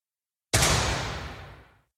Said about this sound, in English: It says, there's a guy who's telling you, on your mark, get set. And then when you hear the gunshot, you're supposed to click on the go button.